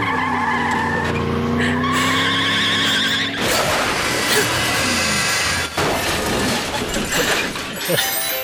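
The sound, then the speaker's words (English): A cartoonish car sound: a rising engine whine with harmonic tones gives way at about three seconds to loud, sustained tire screeching and skidding, with a brief jolt near the end. “I did not remember the car scene at all.”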